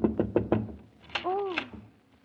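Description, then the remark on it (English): Four quick, firm knocks rap on a wooden door in a steady rhythm, followed by a brief, rising-and-falling voice sound. “Knock once more.”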